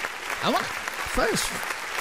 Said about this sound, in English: I love that applause. I don't know what it is.